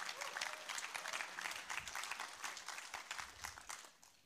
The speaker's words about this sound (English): So hallelujah. Let's applaud our wives. Amen.